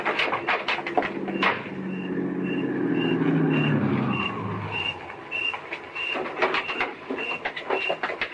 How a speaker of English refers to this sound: Hey, it's a car coming down the street.